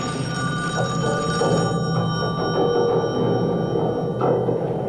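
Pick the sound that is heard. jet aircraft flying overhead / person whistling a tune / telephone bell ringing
telephone bell ringing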